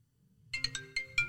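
A phone ringtone plays a quick bright melody of five chiming electronic notes in an uneven rhythm, clear, with no talking over it.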